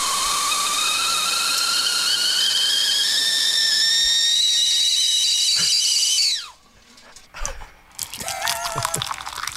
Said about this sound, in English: guys, please take the horrible kettle whistle off the effing podcast. We better remind you what the kettle whistle does sound like, though. So this is the awful sound that they're referring to.